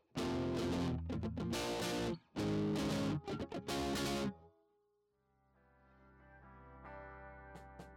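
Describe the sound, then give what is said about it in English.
Loud, heavily distorted electric guitar played through a Boss DS-1 distortion pedal crashes out in chunky bursts of chords, pauses briefly, then thunders again before giving way to a quieter, cleaner, sustained guitar passage. “stepped on a Boss DS1 distortion guitar pedal and lit the music world on fire.”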